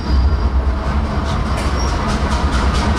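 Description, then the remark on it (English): A train rumbles past, a loud, steady low roar with rhythmic clacking and faint metallic squeals from the wheels. “And here comes the train.”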